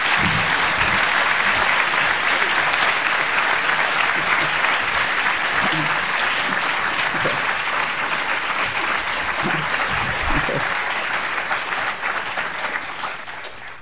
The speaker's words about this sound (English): So can you give her a tremendous round of applause and a welcome, please?